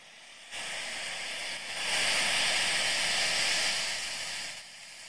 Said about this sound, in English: Another thing that could help, maybe, is you listen to relaxing noises. And what I mean by this is, if you're listening to something calm like ocean waves, such as...